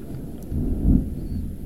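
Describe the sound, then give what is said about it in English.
A deep, low rumble of thunder rolls in, swelling to a heavy peak near the middle before settling back into a steady growl. No voices are heard. “Ooh, spooky thunder.”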